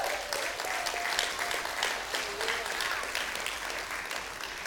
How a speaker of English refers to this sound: And I'm not looking for the applause.